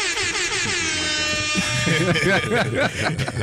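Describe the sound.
A loud, blaring air horn sound effect rings out for about two seconds, then cuts off as excited voices talk over the tail end.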